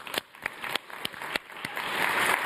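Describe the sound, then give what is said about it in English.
Applause for contestants begins as a few scattered, sharp claps, then swells into a denser, steady wash of clapping toward the end. No one speaks over it. “So let's give our contestants a round of applause.”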